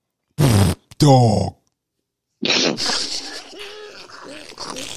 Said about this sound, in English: Dog.